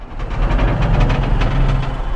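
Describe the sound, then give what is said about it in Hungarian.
A small electric fan spinning up after being switched on whirs steadily, its low motor hum layered under a broad airy rush with a faint rhythmic flutter. It stays loud and even throughout, with no voices. “És külön van neki egy ilyen, amikor felpörög.”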